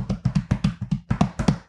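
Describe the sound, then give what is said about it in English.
Quick, light pattering of a dog's paws as the dog arrives, roughly a dozen soft taps in a brisk, steady rhythm, each with a dull thud and a faint click, with no one talking. “That's his footprints.”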